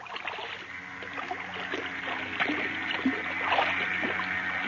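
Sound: waves lapping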